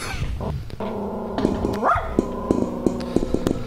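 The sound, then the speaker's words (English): A dog vocalizes, mixing short barks and yips with a brief rising whine, a quick run of sharp calls over a few seconds with no one speaking. “Not actually what that dog said.”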